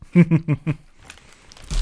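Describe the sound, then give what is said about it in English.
A quick run of short voiced sounds gives way to a crisp crunch of someone biting into a big potato chip, followed by a few louder crackling chews. “It's a big chip. That's a crunch.”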